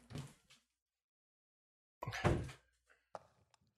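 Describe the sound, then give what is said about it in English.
A door is pushed shut: a soft bump, then a pause and a heavier thud with a brief rattle, followed by a couple of faint clicks as it latches. Nobody speaks. “I gotta close the door to my.”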